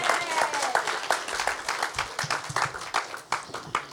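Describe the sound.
A round of applause from a church audience: many hands clapping in a dense, uneven patter that holds steady for the whole stretch, with a few voices calling out beneath it.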